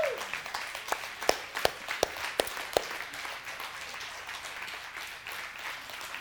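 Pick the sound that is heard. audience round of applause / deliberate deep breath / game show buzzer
audience round of applause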